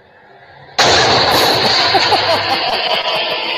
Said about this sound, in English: Oh, so there she goes. Crashes. She was on the wrong side of the road as well, wasn't she?